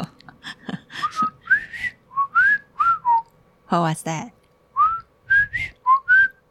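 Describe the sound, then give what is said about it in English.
A person whistles a bird call: a series of short, rising, chirpy notes in an uneven rhythm, clear, briefly interrupted midway by a spoken question. “It's a whistle song. It's a bird call.”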